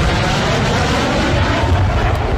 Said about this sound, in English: Sonic boom. It didn't quite sound like that, though, yesterday,